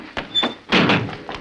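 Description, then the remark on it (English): A heavy window shutter slams shut: a couple of lighter knocks, then one loud, booming bang with a brief rattling tail, and a softer final thud. “Oh, the shutter. Now we are trapped.”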